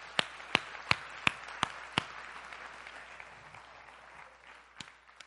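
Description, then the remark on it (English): An audience at New Life church applauds in a steady, dense wash of clapping for people who decided to give their lives to Jesus that day, with a run of six sharp, evenly spaced claps standing out at the start and one more near the end. “Can we just clap for our friends who made a decision to give their life to Jesus today?”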